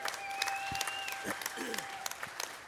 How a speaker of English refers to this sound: And that's what it's been for over 25 years. Can we give God a huge round of applause for that?